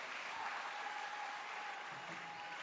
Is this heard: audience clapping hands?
yes